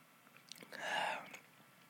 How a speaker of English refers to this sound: And for those watching on the YouTube, you see me holding a glass of wine and you're going to watch me take a sip of wine.